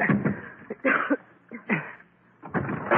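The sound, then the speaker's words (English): A door in a burning building being smashed open: several heavy, irregular blows and crunching, splintering crashes, loud, with short pauses between the impacts. “Maybe we can smash our way out.”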